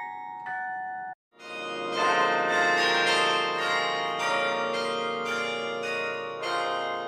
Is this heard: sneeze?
no